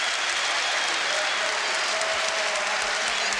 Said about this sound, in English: Oh, it's in, a superb goal by Hoddle! He salutes the crowd, he gets applause from his manager and the bench and from the Tottenham fans as well.